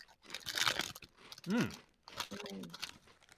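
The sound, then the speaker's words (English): A bag of original-flavoured Monster Munch crispy potato snack is torn open, with loud crinkling, rustling bursts of plastic separated by a short hummed vocal sound. “So this is the original flavored crispy potato snack, Monster Munch. We'll try it.”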